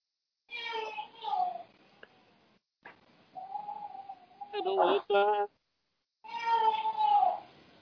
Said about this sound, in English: I have to admit, that's one thing I really miss about Boudreaux making his presence known. One day he was just talking. I've never had a cat that was as vocal as Boudreaux.